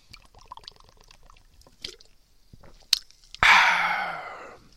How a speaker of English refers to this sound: So, to tell a quick story, I'm going to take a sip of this beverage.